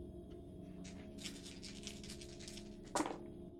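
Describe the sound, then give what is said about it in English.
Dice rattle quickly for about two seconds as they are rolled again for a wits check in a game, then land with a single sharp clack. The sound is quiet, with a low steady hum beneath and no talking. “Do you want to roll again? Yeah.”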